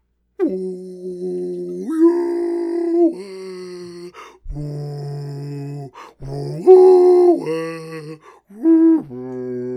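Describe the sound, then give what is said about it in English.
A voice imitates a whale call with a string of long, wavering moans and hoots that slide up and down in pitch, fairly loud, with brief pauses between. “That's not the sound of a whale. A whale sounds like...”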